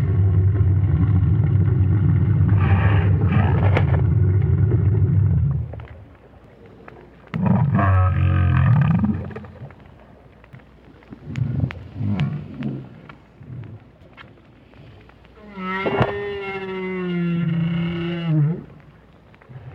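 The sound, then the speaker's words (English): A lone adult whale calls underwater, recorded by Roger Payne with a hydrophone on the sea bottom near Peninsula Valdez, Argentina: deep, loud bellowing groans separated by short pauses, then a long harmonic moan that rises and holds before fading. No voices. “at least Roger Payne doesn't think so, but the renowned whale scientist was a bit perplexed by the sounds made by this lone adult.”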